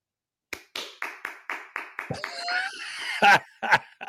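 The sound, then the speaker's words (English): About eight sharp skin-on-skin slaps in a quick, steady rhythm, made by clapping to imitate bare skin slapping after freshly shaving the testicles, followed by a brief jumble of noise and a few final louder smacks. “So what you're saying is the hair keeps them from clapping.”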